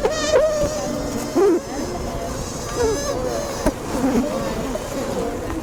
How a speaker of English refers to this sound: Scientists recently found out that Asian honeybees, 亚洲蜜蜂, scream when they're under attack. 遭遇攻击时会尖叫。 But they don't scream like people do. They make a screaming sound by rubbing their wings against their bodies.